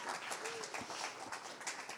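An audience breaks into steady, dense applause for a woman bringing the speaker a water, many hands clapping at once in a continuous wash of crackling noise with a faint voice or two mixed underneath.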